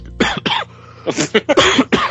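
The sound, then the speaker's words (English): A loud fit of coughing from a man who has been very unwell for the past week or so: two quick coughs, a brief pause, then a longer run of harsh, spluttering coughs with throaty rasps in between. “Coughing and spluttering”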